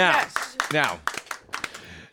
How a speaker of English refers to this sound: Listeners at home, you might have just heard some applause, and that's because of the moving music. But let's hear that applause again, because we have something to get to right away.